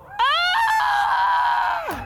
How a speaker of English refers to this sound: This is so good, it makes me want to scream. Help me out.